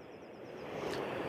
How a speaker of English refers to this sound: I'm walking away because there's a very loud train going by right now, so I'm moving, but I'm walking.